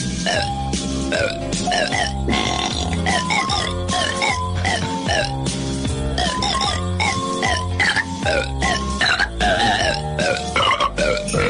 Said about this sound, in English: the most unusual Christmas album ever, …